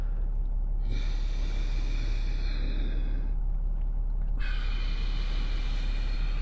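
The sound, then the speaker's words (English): Two long, steady Ujjayi yoga breaths with a soft oceanic hiss, air moved from the nasal cavities down the throat, one drawn in and one let out, with a brief pause between them and no talking. “Ujjayi breathing sounds sort of like this.”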